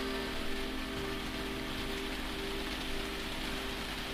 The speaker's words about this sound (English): You hear the rain hammering on the tavern roof.